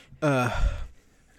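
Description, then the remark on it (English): A single deep breath through the nose, fairly loud, with a brief voiced, sigh-like edge at the start that trails off into a soft rush of air, then quiet; taken by a person sitting in the lotus position with eyes closed as part of a meditation ritual. “I do what they call forced alternate nostril breathing, where I breathe in one nostril, breathe out the other nostril, and then I alternate, and then that gets me into a zen state.”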